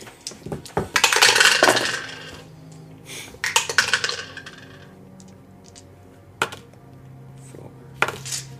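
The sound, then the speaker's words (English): Dice clatter and tumble across a hard tabletop in a couple of bursts, followed by a few sharp isolated clicks as pieces settle, fairly loud with no talking. “If you roll hit dice, you get to roll a 1d12 on top of that.”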